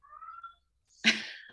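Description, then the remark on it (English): A cat meows twice: first a soft, thin mew, then after a short pause a louder, harsher, breathy meow that trails off. No one speaks. “The cat motherfucking agrees.”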